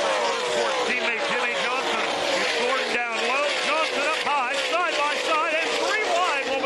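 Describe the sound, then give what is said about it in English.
A pack of stock cars roars into turn one, loud, their engines whining and shifting pitch as they bunch together, with a steady, unbroken drone throughout. “He's scrambling again as they go off to turn number one to get out of 11th position.”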